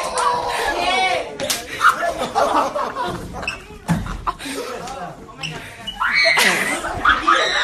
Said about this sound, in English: Some students are sitting, just watching the events unfold, where one student is clearly slapping another, and they go back and forth, slapping with open fists.